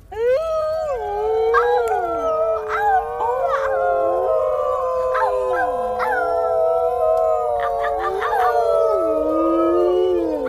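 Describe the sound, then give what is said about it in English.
Several dogs howl together in a loud, sustained chorus at an annual ceremonial gathering, their long wavering voices overlapping and sliding up and down in pitch, with a few sharper yips breaking through, continuing without pause. “But he was utterly drowned out by the beginning of the great howl of harmony.”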